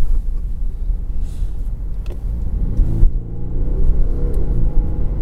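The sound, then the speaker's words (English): A 2.2 diesel car engine rumbles steadily, then its low drone rises in pitch and strengthens as the car accelerates, with no talking. “It will take off if it's provoked. Sort of accelerates.”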